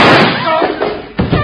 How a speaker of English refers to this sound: Oh. I shot you. Jubilee! You shot my dad!